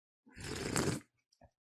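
food or drink, slurping coffee

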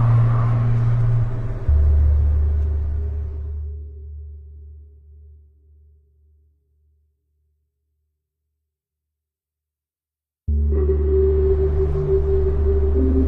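vehicle, car driving

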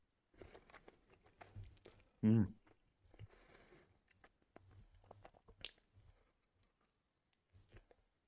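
human body sound, chewing food

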